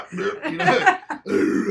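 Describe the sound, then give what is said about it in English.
A person growls while working out, letting out deep, raspy, strained growling noises like grunting through a heavy lift: a long rumbling burst, a brief break, then another sustained growl. “when I growl, and I mean, some of those that have worked out next to me, I make some funny noises.”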